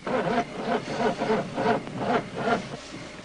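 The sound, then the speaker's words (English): A car engine cranks over and over without catching, a steady rhythmic churning of the starter about twice a second, moderately loud, with no voices. “Won't start.”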